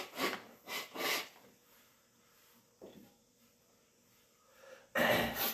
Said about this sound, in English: Give me one second here. I still got some sniffles. Especially when I get warm air on my nose. Give me one second, excuse me.